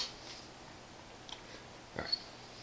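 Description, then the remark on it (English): Faint chewing as a man eats a cheeseburger: a couple of soft, wet crunching bites against a quiet background hiss, with a slightly stronger pair of chomps near the end. No one speaks. “this man's is chewing a cheeseburger.”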